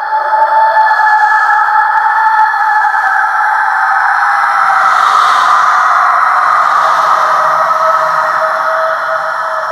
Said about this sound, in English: Their ghoulish screeches burn through the night air and singe the orphans' eardrums. The clamor is not unlike the mixture of a violin poorly played at high volume and a thousand hungry, teething infants.